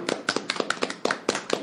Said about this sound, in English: Once again, everybody, round of applause for Patrick in Minnesota.